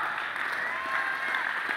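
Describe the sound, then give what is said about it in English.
Steady applause from a large group, dense continuous clapping with no pauses, filling the space evenly. “Somebody ought to clap your hands, one.”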